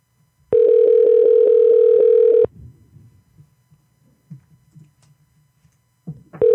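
A steady, loud telephone tone while placing a call holds for about two seconds, then cuts off to quiet background rustling before the tone starts again at the very end.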